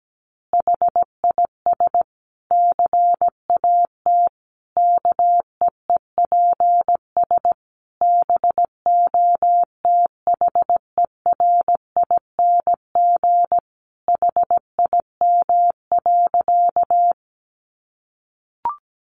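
Morse code practice of easy phrases sent at 17 words per minute as a single steady mid-pitched beep, keyed in quick dots and dashes at a moderate pace for about seventeen seconds, with no voices, ending in a brief click.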